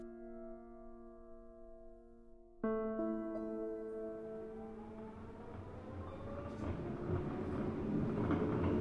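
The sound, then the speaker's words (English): A steady droning hum gives way to a sudden surge of rumbling noise as a subway train accelerates through a tunnel, its motor whine climbing in pitch and the roar growing louder and fuller throughout. “Miriam sat in the window seat near the middle of the subway train, watching as the lights of the tunnel raced by”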